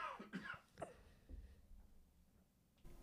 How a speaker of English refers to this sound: You want to cough on the air now? I love that. You silenced it and were quiet and lead the other way so nobody would know unless you were outed.